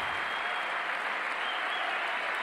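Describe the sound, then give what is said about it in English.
Steady, dense applause from an audience, many hands clapping at once in a continuous loud wash of sound with no voices standing out. “Wow, that's quite the rousing applause.”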